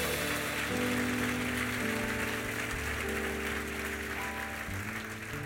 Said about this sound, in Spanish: Dale un aplauso, por favor.